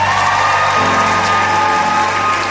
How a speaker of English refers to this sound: And now give the Lord a mighty hand clap.